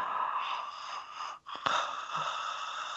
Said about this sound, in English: So if people want to practice it at home, you just kind of hold a little tension in your, you know, in your throat as you both inhale and exhale. So I've heard it described as Darth Vader breathing. So it's, you know, you can really hear it.